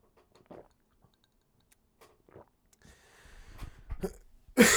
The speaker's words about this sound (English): I'm taking a sip of my new water.